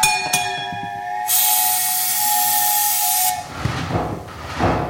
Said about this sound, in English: All aboard! All aboard! Train number 37 departing for Ocean Beach on track 4 end of the line.